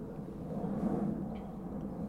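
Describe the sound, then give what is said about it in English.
A loud airplane passing, heard as a steady, dense low roar that holds evenly for about two seconds with no voices over it. “Oh my god, it's a loud one. It is a very loud plane.”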